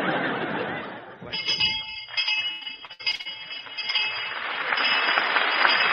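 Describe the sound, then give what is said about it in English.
A bright, ringing quiz show bell sounds steadily with a shimmering high tone, rising over a noisy wash of audience laughter that fades and swells for several seconds. “Well, there's the bell, kid.”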